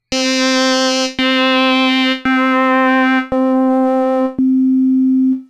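A steady FM synthesized tone from a VRC7 instrument in Family Tracker repeats five times at the same pitch. The modulator fades progressively in the mix while the carrier stays at full volume, so each note is less buzzy and bright than the last, until the carrier sine wave plays alone as an almost pure, smooth tone.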